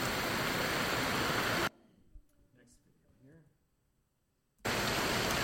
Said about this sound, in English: So this is the rainy season, the beginning of the rainy season. We had expected this might happen, but here it is.